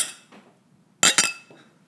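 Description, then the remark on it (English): Two quick, bright glass clinks ring out close together, like glasses touched in a toast for the 4th of July among men drinking IPA beer, with a faint earlier tap and a softer trailing clink. “Toast America with us. 4th of July. Cheers, gentlemen.”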